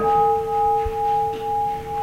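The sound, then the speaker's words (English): A Dean Gong, one of two bells inside a temple that the Reverend rings to punctuate the service, rings out in a long, sustained metallic hum, its steady tones wavering in slow, gentle pulses as the note lingers, with no voices over it. “Inside, there are two more bells, called Dean Gongs, that the Reverend rings to punctuate the service.”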